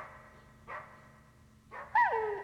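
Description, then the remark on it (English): A dog barks a few times in quick bursts, the last one louder and more drawn out, almost whiny, with no talking over it. “I thought you were good with dogs.”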